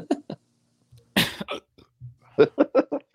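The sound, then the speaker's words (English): A person hiccups in a string of sharp, throaty bursts, quick and fairly loud, with one harsher rasping burst in the middle and a rapid run of several more at the end. “You sniffling and hiccuping the whole day.”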